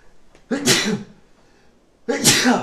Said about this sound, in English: oh, I'm gonna sneeze. Oh no.